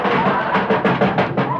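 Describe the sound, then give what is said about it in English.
A car door is hurriedly fitted back on: a quick run of loud metallic clunks and rattles, about five hits in rapid succession, with no talking. “Rochester, put that door back on.”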